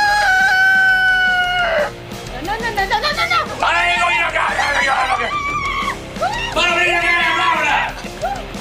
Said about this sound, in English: Girl, that rooster gonna go off on you like that grumpy old dude.